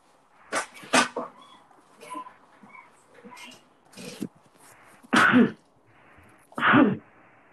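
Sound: sneezing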